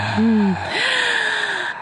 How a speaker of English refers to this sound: Oh, we can do some real heavy breathing here, baby.